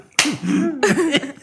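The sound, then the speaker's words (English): Two sharp, loud slaps like hands clapping together, about half a second apart, each followed by a pitched, wavering ringing tone, with a smaller smack near the end. “Because it sounded like hands clapping.”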